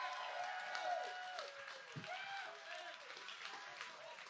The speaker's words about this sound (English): If you believe that kind of thing, give the Lord a clap and a shout tonight.